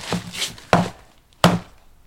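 Three loud, sharp whacks of a claw hammer land at a steady pace, each a hard knock with a short ringing tail. No one speaks.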